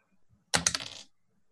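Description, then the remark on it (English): A quick clatter of dice tumbling across a hard table, a burst of sharp, bright clicks and rattles lasting about half a second before settling, fairly loud. “Only hit once with the Morning Star, which is my red dice.”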